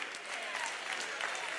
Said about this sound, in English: Come on, clap your hands.